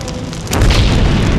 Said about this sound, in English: I heard a tremendous explosion. Rushing out, I saw that the public buildings, the Navy Yard, the rope walks were all on fire.